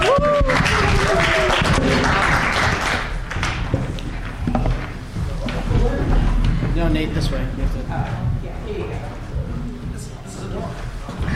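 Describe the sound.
A crowd applauds loudly and steadily for about eleven seconds for a female performer about to sing her last song, the dense clapping mixed with scattered cheers and voices, easing slightly toward the end.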